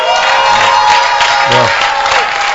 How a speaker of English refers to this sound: I think it's nice to clap.